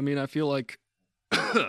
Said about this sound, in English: I feel like I'm coughing on something. Never eat a handful of peanuts before you go talking for an hour on a show. That's my advice.